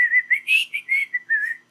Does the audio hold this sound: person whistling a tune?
yes